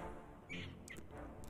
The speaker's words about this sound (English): Monkey.